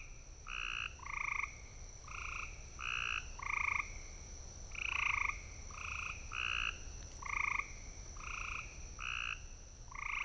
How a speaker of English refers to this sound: So those are very bird-like, but they're not birds. Those are gray tree frogs, and we have those in the listening area, and they can go crazy vocalizing in our backyards or out in the countryside in the deep, dark woods.